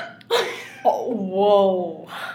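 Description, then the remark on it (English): A single drawn-out, throaty burp after drinking mimosas, lasting about a second, preceded by a brief breathy vocal sound and followed by a faint exhale. “That was a mimosa burp, I'm sorry.”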